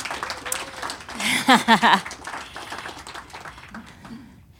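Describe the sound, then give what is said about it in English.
An audience claps in a dense, steady patter for a few seconds, with some voices calling out in the middle before the applause fades away. “Can we give a hand clap to our friends?”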